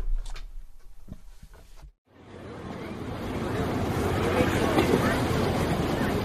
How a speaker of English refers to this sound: The sounds of Four Freedoms Park on Roosevelt Island in New York, across the East River from the FDR driveway and the United Nations. It's an uplifting piece of public landscaping,